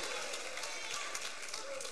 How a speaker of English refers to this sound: Because the Bible says in Romans 16 and 20, the God of peace will shortly crush the serpent, Satan, under your feet. Just give it one stomp right there.